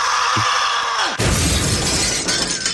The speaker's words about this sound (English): Here's audio of the crash, listen. Wow. It's clear as a bell. Really good microphones.